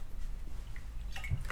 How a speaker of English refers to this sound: Sorry, I'm drinking, everyone. Yummy, yum, yum. Water. Still yummy.